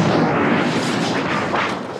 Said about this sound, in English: My personal favorite, speeder bike changing gears. Biker scout hitting tree and speeder bike explosion.